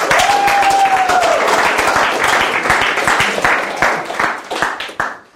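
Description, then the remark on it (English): A church audience claps loudly and steadily for several seconds for people who contributed questions, many hands overlapping into a dense burst of applause, with a brief whistle or cheer early on before the clapping thins and fades. “Can we clap for them?”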